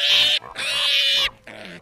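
A pig named Gilbert squeals nervously in three loud, shrill bursts, the middle one longest, each harsh and high-pitched with brief gaps between them.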